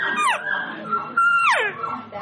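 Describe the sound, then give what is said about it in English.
Two high, nasal elk calf and cow calls blown on a thin signature diaphragm call from the maker, each sliding sharply downward in pitch, with a thinner, steady whine held between them. “We're doing those calf and cow.”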